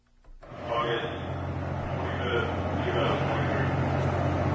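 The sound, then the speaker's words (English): The engines of a 420-foot Coast Guard icebreaker, the largest vessel the Coast Guard operates, drone steadily at Pier 1 in Kodiak as crews walk the decks doing routine maintenance: a deep, continuous mechanical rumble with a low hum that fades in quickly and then holds loud. “The Healy's engines were running as crews walked the decks performing routine maintenance last week.”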